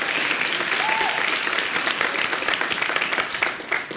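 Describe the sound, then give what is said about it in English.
Steady, dense applause from a large audience fills a room in response to a call to overturn Citizens United, many hands clapping at once in a continuous wash of sound that holds strong throughout before easing slightly at the end. “There was a lot of applause in this room about overturning Citizens United.”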